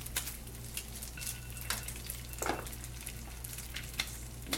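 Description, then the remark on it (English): Bacon sizzles and crackles steadily in a pan as it is fried crispy, a dense hiss of tiny pops with a few sharper spits, plus a low constant hum underneath and no talking. “do you like your bacon crispy? Yes. Okay, cool. I might give the other side, like, one more minute.”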